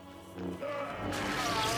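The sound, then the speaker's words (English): A heavy metallic smash as Obi-Wan strikes Vader's armored chest plate with the hilt of his lightsaber, a first thump followed by a louder, harsh crash that rings on with a bright, gritty wash. “When when Obi-Wan turns his lightsaber and begins using the hilt to smash Vader in the chest plate.”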